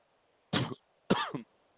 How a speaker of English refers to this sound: That's a echo chamber cough. Wow. Wow. You okay over there? Yeah, we're okay. We're just okay. Stuck in an echo chamber.